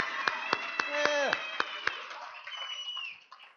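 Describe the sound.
An audience claps in steady unison as people in recovery from addiction and their family members are asked to clap. About seven sharp, evenly spaced claps sound while voices whoop and cheer over them, before the sound trails off into crowd murmur.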